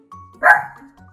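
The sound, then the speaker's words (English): A single sharp bark from Luna, a dog, rings out loud and sudden, with a brief quiet lead-in and a faint tail afterward; no one speaks. “So, Luna, on a scale of 1 to 5, how many doggy treats do you give this squirrely story?”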